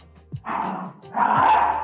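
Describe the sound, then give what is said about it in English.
A dog barks twice in quick succession, each bark loud, rough and drawn out, with no one speaking. “Bro, dog's going ham.”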